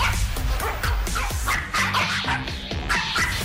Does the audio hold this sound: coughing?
no